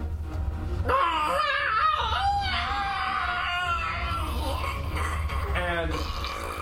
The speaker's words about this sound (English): We definitely hear a scream.